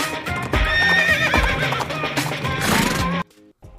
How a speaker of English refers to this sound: The Four Horsemen ride four horses all at one time. Giddy up.